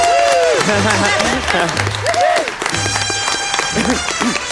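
A studio audience applauds enthusiastically, a dense, loud, continuous wash of clapping that stays steady throughout, with rising and falling whoops and tonal sounds mixed in.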